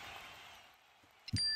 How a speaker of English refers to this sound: My phone pinged right at that moment, indicating the incoming text message.